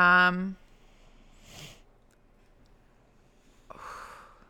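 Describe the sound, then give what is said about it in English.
A single sneeze, a sudden breathy burst near the end, after a short voiced exhale and a soft sniff-like puff earlier. Otherwise quiet, with no talking. “Bless you.”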